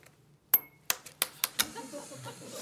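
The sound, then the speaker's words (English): A marble drops into a glass with a bright, ringing clink, then bounces several times in quickening succession before settling into a faint rattling roll. No voices are heard. “Let's just, for the sake of our research tonight, let's say this marble represents an Acela student.”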